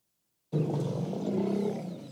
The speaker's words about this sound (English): To witness this celebration is wonderful. It's sheer elephant joy. That's the excitement right there. Yeah, they couldn't have known that this baby was born, and they've just realized that they've got a new member to the herd.